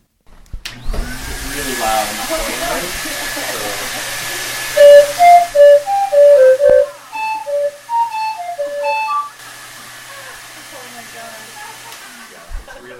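A steam calliope toots a short, loud melody of shrill whistle notes over a constant rushing hiss of steam; the tune stops after a few seconds while the hiss carries on.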